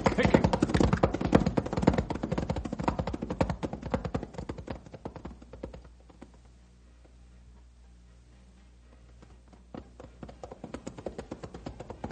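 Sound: horses' hooves clip-clopping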